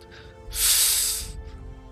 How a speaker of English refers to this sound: And he stops and sniffs into the air.